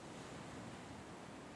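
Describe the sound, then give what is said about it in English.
A steady, broad rush of ocean surf, like waves washing onto a shore, holding even with a slight windy hiss and no voices. “I stand here watching these waves and I just don't know what I'm going to do without you.”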